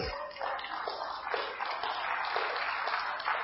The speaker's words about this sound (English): Amen. It's a good time to clap.